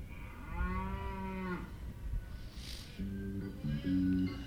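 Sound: cow mooing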